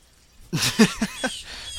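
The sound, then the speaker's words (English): A bird lets out a short run of four chirpy calls in quick succession, clear, followed by a quiet outdoor hush. “For anybody who notices bird sounds in the background, I'm recording this outside.”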